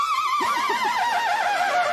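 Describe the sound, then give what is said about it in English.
A person's voice mimics a horse's whinny, a loud, wavering, trilling neigh that slides downward and quavers rapidly for about two seconds, clear with no other sounds, made as a mocking horse laugh after a lost ring spin. “It's hard enough with Outriders to lose a ring spin, but then to have a horse laugh at me.”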